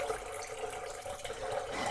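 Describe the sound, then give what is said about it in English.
A steady stream of tap water pours into a pot being filled to boil noodles, a continuous rushing splash with a faint rising ring as the vessel fills, no voices. “I don't want to really fill it all the way to the top because we are going to have to deal with water vapor”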